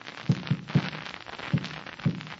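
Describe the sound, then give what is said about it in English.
The distress signal SOS tapped in Morse code against a wall: dull, low taps in a quick cluster of three, then two more spaced farther apart, over a steady background hiss with no voices. “That was the signal SOS.”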